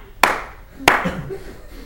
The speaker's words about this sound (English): So I clap my hands.